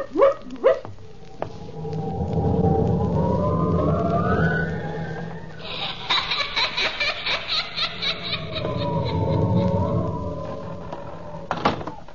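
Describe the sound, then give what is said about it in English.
A door in a haunted house creaks open in a long, wavering groan, followed by a series of quick knocking thumps, another drawn-out creak, and a final sharp slam. No one speaks. “That door again. Insidious feeling, doors opening and slamming.”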